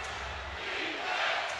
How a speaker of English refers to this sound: And this crowd was ready to explode. A minute two to go. Crowd chanting for defense.